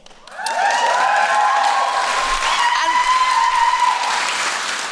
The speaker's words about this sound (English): And the crew did that. The crew applauded.